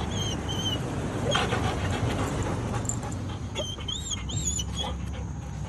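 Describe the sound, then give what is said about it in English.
A German shorthaired pointer whimpers at goats he saw in the morning, in a series of thin, high-pitched whines, some rising and falling, over a steady rushing outdoor background. The whining comes in short repeated bursts. “How do you think my dog would do? Because he saw some goats this morning and this is how he reacted to it.”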